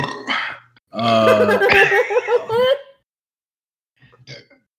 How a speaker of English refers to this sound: His little baby burps? Yeah, they're cute. Hey, I needed that, okay? He's got little baby burps. It's okay. It's a little cute. It's cute. Little baby burps. He's okay.